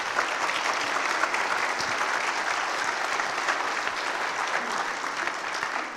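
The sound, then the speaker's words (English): An audience claps steadily for several seconds for three women being introduced as new ministry leaders, a dense, even wash of many hands applauding together with no pauses and no voices standing out. “Could we clap it up for these three ladies?”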